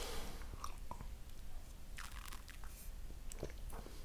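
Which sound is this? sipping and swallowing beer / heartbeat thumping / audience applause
sipping and swallowing beer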